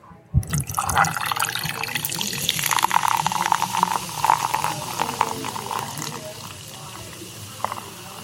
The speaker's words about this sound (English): So here's let's pour some Verner's, Diet Verner's, into this glass here.